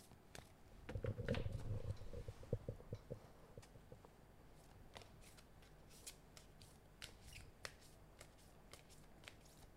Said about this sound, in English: So for those who are listening, we're shuffling the cards.